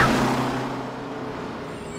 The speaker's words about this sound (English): Okay, and now the last scene is when Regina gets hit by a bus.